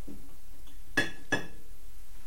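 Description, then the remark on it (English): Two quick, bright ceramic clinks about a third of a second apart, each ringing briefly with a high metallic tone, as a mug knocks against something while being grabbed to place on a Keurig coffee maker's drip tray. No voices. “Now I'm going to grab a mug.”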